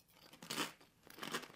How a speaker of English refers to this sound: He's really putting on his chip tasting face for this one. Well, they're very crunchy.